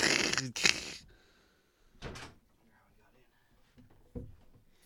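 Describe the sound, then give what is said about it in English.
A door is pushed shut with a sharp, clattering thud, followed a moment later by a softer knock, then quiet room tone with faint murmuring. “Close the door if you don't mind.”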